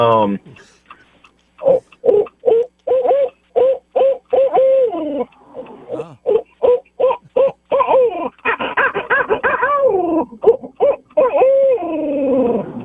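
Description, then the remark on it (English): A self-described champion owl hooter imitates an owl's hoot, voicing a long, rhythmic run of loud hooting calls in quick bursts, with brief pauses and a drawn-out, sliding call near the end. “So I was going to give you an owl hoot this morning.”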